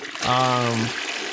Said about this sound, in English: Well, I'll let you think for a second because I'm flushing.